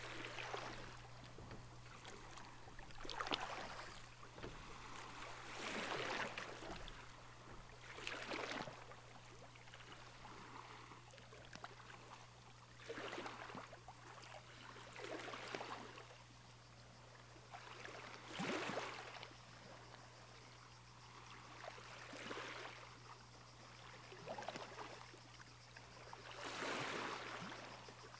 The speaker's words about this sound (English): And before long, reach the shore of the island, where the translucent blue sea gently laps on a crescent beach.